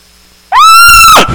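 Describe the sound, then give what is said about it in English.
A single loud, high, drawn-out nasal mew rising and then holding steady before breaking off, an imitated cow elk call from a hunting call, made by hunters beneath bedded elk on a hillside during an elk hunt, alone with no talking. “Get right underneath them. Cow call.”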